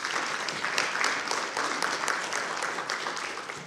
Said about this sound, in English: I want to tell you, you have fantastic leadership in this church. Like if I was y'all, I would be applauding because I've been with these guys, and I think it's amazing.